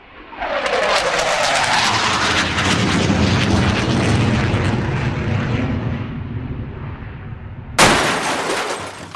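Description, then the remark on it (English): A loud, sustained airplane engine roar with a pitch that sweeps downward like a plane in trouble with a fuel issue, ending in an abrupt burst like a crash near the end. No one speaks. “There's a small fuel issue with the plane.”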